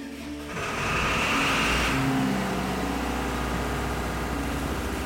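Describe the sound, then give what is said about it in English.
The engine of a large shrimping boat moored at a dock in Aransas Pass runs loudly, a steady, heavy mechanical drone with a low rumble that swells after the first second and stays constant, with no voices. “The engine noise is so loud, it's almost overpowering.”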